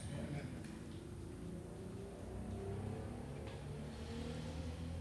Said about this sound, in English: Let that motorcycle go by.